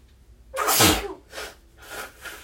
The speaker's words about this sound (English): But yesterday, oh, I had a sneeze.